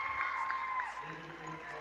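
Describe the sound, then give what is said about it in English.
Crowd applause at a basketball game: fans from Axtell applaud a player leaving after fouling out, a steady wash of clapping and murmuring voices at moderate loudness, with a few thin sustained tones running through it. “And the folks from Axtell are saying thanks with their applause as he's contributed 11 points and 7 rebounds here in the game.”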